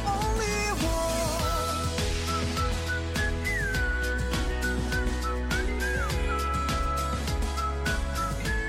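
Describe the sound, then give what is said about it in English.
A bright whistled melody in a drama soundtrack song rises and glides over a full music track with steady beats and dense instrumentation, the tune carrying clearly on top without any singing or talking. “They were just whistling”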